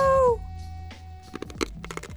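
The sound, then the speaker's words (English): A short high, tonal cry opens, then a run of sharp, irregular crunching crackles as a man chews broken glass from a light bulb in his mouth, the bursts getting louder toward the end. “He's crunching it.”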